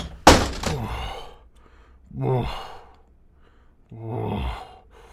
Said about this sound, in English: My door burst open, and there he stood.